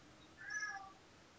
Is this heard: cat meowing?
yes